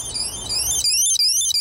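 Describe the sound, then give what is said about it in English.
A loud, piercing electronic alarm from a small anti-theft device, sounding continuously in high, warbling tones that sweep up and down, with a brief dropout near the end. “Got a small anti-theft device here.”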